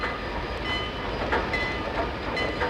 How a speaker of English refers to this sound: The train groans, creaks, and jerks forward.